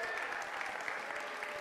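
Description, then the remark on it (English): Steady applause from an audience for the staff, interns and student staff who stood up. It is a dense, even patter of many hands clapping at a moderate level throughout, with no voices standing out. “I didn't do that so you would applaud for them.”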